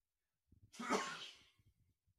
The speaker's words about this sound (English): Okay, I'm back. Sorry, I really had to sneeze there for a second.